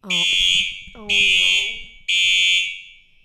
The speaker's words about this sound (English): We just had to go outside because, as you could tell, there was a fire alarm. They told us to get out, then they told us to get back in, and then we had to get back out again.